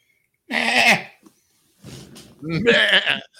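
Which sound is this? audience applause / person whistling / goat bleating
goat bleating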